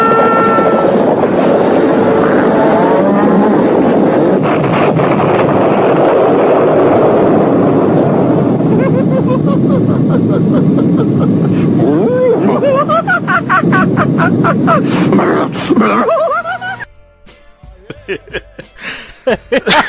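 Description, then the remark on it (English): A cartoon bull in the Silly Bull charges in a loud, thundering rush with wavering bellow-like tones, then smashes through a spoken word and breaks it in a sudden crash, followed by scattered clattering bits of debris. “And then you see he comes charging like you just heard right there, and he smashes right through the word and breaks it”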